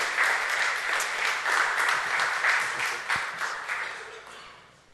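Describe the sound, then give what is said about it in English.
A crowd applauds steadily to welcome a speaker to the stage to share from God's Word. It is a dense wash of many hands clapping at once, holding strong for several seconds before gradually thinning and fading out near the end. “So give him a round of applause, please.”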